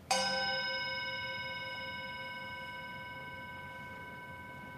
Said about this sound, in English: As we listen to this chime, let us remember our connection to each other and the world around us.